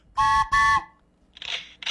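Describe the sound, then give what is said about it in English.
A whistle is blown twice in quick succession, two loud, shrill, reedy blasts about a quarter second each, followed by quieter breathy hissing noises. “Let me blow that whistle one more time.”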